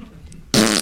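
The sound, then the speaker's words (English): A man makes a single loud, buzzing fart noise with his mouth, a short raspberry lasting about a third of a second after a moment of quiet. “Or not only that, the man likes to make fart sounds.”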